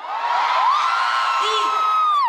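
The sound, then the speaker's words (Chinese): A large crowd of fans cheers loudly and continuously, with many high-pitched whoops and screams rising and sliding over a dense roar that stays steady throughout. “我想用熱烈的歡呼聲來。”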